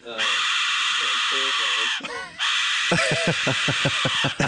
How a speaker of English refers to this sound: It's this guy. He's like, he looks like an Aztec. It's like one of those goats. Like, it's like a goat screaming. He's got this little whistle.